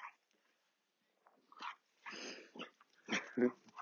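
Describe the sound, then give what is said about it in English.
Two dogs, one of them a Labrador, growl and snarl at each other in a tense standoff, a few rough, throaty bursts broken by short pauses, moderately loud, with no talking. “Wolfie's managed to chase the dog off”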